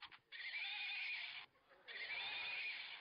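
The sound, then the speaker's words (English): Two loud, shrill neighs from a furry toy hobby horse, each about a second long with a brief gap between, bright and electronic-sounding, with no talking. “This one's pink because it's gears, but and this one's furry, and this one even kind of makes cool noises. Can you hear that?”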